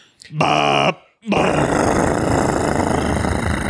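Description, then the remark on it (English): A voice imitates a truck's Jake brake with a loud, buzzy, harmonic grunt, a brief pause, then a long rattling growl that holds steady for a few seconds. “I had to do the Jake brake sound.”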